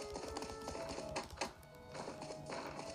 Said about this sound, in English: That's a door, let's go down.